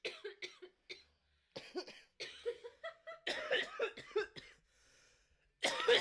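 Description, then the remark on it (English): A long fit of harsh, raspy coughing after smoking weed from a bowl, repeated bursts in quick succession with brief gasps between, ending in another loud cough. “I really tried not to cough.”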